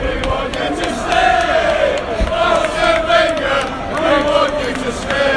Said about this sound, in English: And as you can probably hear, a bit of chirping from the United supporters who are hanging around outside the ground saying they want him to stay. And also a bit of tune for Robin Van Persie.